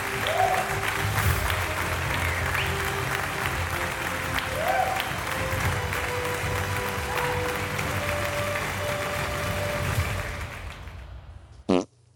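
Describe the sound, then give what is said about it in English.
An applause soundbite: sustained applause from a crowd, a dense steady roar of clapping with scattered tonal bits underneath, lasting about ten seconds before cutting out abruptly, followed by a brief sharp burst. “Pause for applause. Throw that soundbite in there.”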